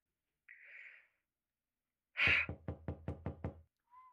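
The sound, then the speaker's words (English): A soft breathy exhale, then a sudden heavy thump followed by a quick, evenly spaced run of about six sharp knocks on a door, loud, ending abruptly. “Where's the servant whose business it is to answer the door?”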